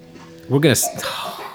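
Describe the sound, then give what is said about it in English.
A single short, rough cough from a man bursts out, briefly louder than its surroundings, with a voice talking quietly before and after it. “Okay, did you just hear? No, he just coughed.”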